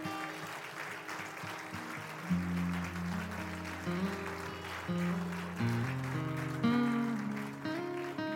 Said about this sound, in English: Now come on, give the Lord a hand clap of praise.